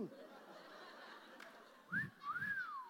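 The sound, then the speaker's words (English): A two-note catcall whistle from an audience member, a short rising chirp followed by a longer tone that climbs and swoops down, ringing out clearly over a faint murmur. “Oh, he whistles too well.”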